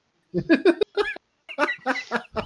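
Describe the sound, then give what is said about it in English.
Two birds squawk and cluck as they fly out the window, in two quick bursts of harsh, rapid calls, fairly loud, with a short pause between them and no talking. “Birds. I heard two birds flying out the window.”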